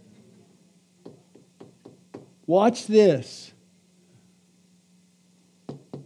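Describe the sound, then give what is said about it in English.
Several sharp knocks on a hard object, spaced irregularly over a couple of seconds, followed by a man speaking briefly, then one more knock near the end over a steady low hum. “And here's how he knocks a lot of times now, through this.”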